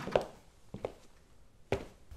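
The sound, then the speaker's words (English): A door shuts with a few dull, wooden thunks: one solid knock, a softer double bump, then a final firm clunk, with quiet in between and no voices. “Close the door.”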